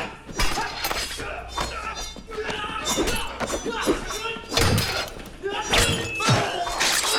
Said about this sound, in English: Yeah, dealing with glass is always hard. It's hard to record because there's so many sharp transients in it, and to get it on down into the stem with a nice, punchy and transient sound is tricky.